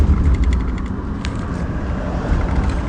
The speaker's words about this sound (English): sorry, truck is really loud.